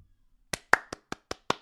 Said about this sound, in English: Again, we'll give you a short little clap. Respect is due.